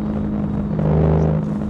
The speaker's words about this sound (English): Oh, there's another silver Porsche.